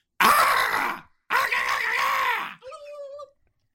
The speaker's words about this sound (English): Those are definitely chicken noises. He's royalty. He's royalty, so you have to respect him.